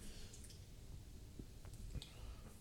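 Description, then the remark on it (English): Faint, wet squelching and a few soft plops as thick garlic hot sauce is squeezed out of a bottle, over quiet background noise with no talking. “God dang, this bitch is thick as shit. Oh, you can dump some of that off.”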